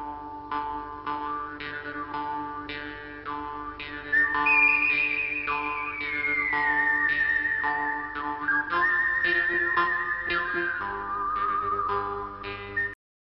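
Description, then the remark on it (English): A whistled melody from a western film score glides in long sustained notes over a steady musical backing with regular plucked or percussive beats. It plays fairly loudly, with no talking. “Again, the score.”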